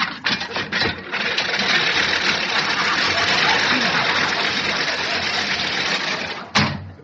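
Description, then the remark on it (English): A lawnmower engine sputters to life and runs with a loud, steady, buzzing drone for several seconds before cutting off with a sharp clunk. No one speaks. “I just want to get the lawnmower.”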